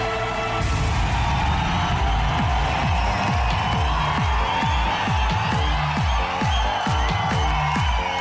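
A nightclub crowd at Amnesia in Ibiza cheers and shouts loudly over a pounding, steady dance beat during a live Radio 1 Essential Mix, with repeated kick drums driving underneath the continuous roar of voices.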